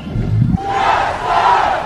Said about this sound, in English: People were excited as the parade started rolling through the streets of South LA. There was a lot of shouting and cheering.